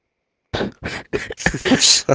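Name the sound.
cough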